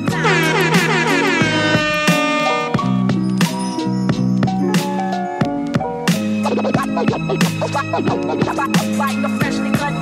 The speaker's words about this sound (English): Man, where my air horns at?